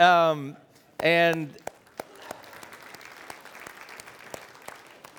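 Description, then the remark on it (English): An audience at First Baptist church breaks into steady, moderately loud clapping that continues for several seconds, preceded by two short, pitched vocal whoops or cheers. “And yeah, feel free to clap.”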